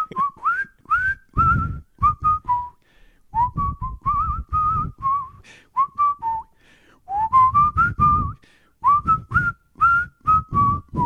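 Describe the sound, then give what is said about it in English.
A man whistles a melody, short, clear phrases rising and falling in pitch, with brief breathy pauses between them and no talking. “can … whistle? Everyone asks that.”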